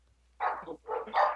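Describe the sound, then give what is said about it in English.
A pet dog barks, two or three quick, loud barks in a short burst, the last slightly drawn out, with nothing else in the background. “Oh, your dog did not approve of that joke.”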